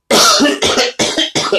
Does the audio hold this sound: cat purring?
no